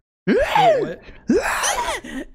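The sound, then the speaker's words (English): Two loud, strained vocal bursts from people imitating ape and zombie noises, each swooping up and down in pitch like a hooting groan, with a brief pause between them. “We are making ape noises. Zombie noises.”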